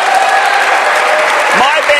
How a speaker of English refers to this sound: Yes, let's cheer for that.